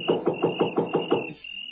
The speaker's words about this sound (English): It was so dark I couldn't see where the doorbell was, so I knocked.